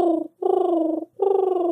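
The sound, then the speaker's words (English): Someone imitates a dove's cooing by vibrating the spit in the back of the throat: three low, throaty, fluttering hoots in a steady rhythm, the middle one held longest, each with a rough, vibrating buzz and no other talking. “Okay, I wouldn't be surprised if all the doves come flying to your window right now.”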